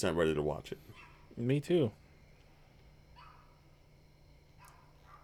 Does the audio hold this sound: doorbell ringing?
no